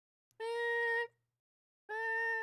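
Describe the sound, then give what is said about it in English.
Two loud, sustained censor bleeps about a second apart, each with a buzzy, nasal tone that sounds a bit like a cat's meow, with no talking in between. “Your beeps kind of sound like a meow.”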